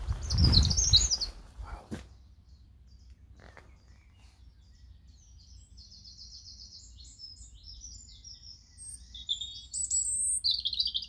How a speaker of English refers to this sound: Amazing birdsong. Almost feels like a rainforest near now.